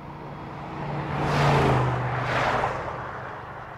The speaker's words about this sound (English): A pickup truck came down the highway, and I jumped in the back.